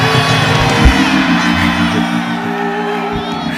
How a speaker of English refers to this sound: Can I ask somebody now in a shout of praise to God, open your mouth and give me one. Shout!